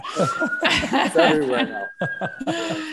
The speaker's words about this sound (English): Don't mind the sirens.